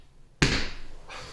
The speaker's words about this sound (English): A good slap. Such a satisfying slap.